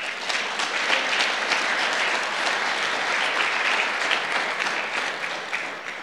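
audience applauding

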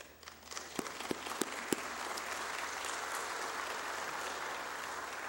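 audience clapping

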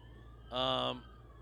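police car siren

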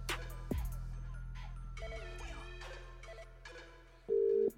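outgoing phone call ringing

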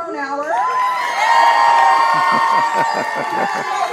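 large rally crowd cheering

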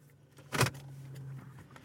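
inside a car

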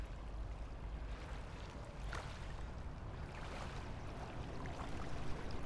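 water moving

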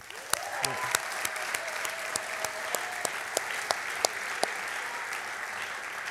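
audience applause

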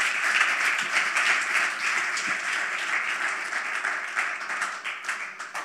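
church audience applauding

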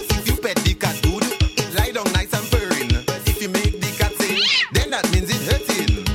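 cat meowing

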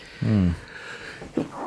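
sneeze

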